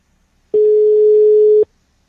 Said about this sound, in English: If we get these irritating beeps, it doesn't ring. Yeah, this is classic Swedish ringtone. You hear this all the time.